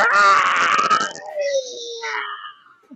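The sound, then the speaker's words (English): A voice imitating a monster lets out a loud, rasping shriek that lasts about a second, then trails off into a falling, thinner wail and a few high, strained squeals. “Looks over at Mashir, looks at the other three of you, and just lets out another shriek.”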